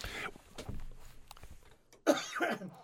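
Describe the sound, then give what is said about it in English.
A harsh cough from a speaker during a program bursts out near the end, preceded by a rougher throaty sound at the start and some low murmuring and rustle in between. “Yeah, see, I even have to cough during the during the program.”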